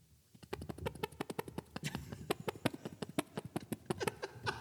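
A rapid series of wet, squelchy little pops, like tiny farts, made by a person winking an eye, repeating for several seconds in a quick, slightly uneven rhythm, with no talking over them.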